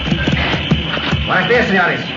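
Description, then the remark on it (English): Galloping horses arriving in the rain pound out a quick, steady run of hoofbeats for about a second, fairly loud, then a voice rises over the fading clatter. “Yes, I hear them. Horses galloping.”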